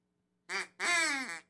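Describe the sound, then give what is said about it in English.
A duck outside a window quacks twice, a short nasal quack followed by a longer, drawn-out one, clear with no talking over it. “Can we have Lenny from outside the window have another quack?”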